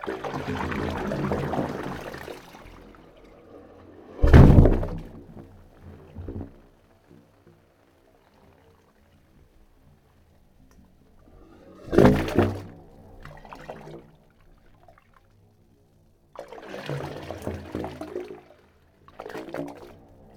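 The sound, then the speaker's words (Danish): Water sloshes and gurgles through the pipes of the Wave Organ in San Francisco, on the tip of a small artificial jetty in San Francisco Bay between the Golden Gate Bridge and the Oakland Bay Bridge, in irregular surges with hollow resonant tones swelling and fading between louder splashing, without any talking. “For nu næsten præcis 2 år siden, der besøgte jeg et såkaldt bølgeorgel, der ligger cirka midt imellem Golden Gate Bridge og Oakland Bay Bridge i San Francisco.”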